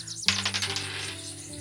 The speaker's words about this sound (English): Whoops, I dropped my dice.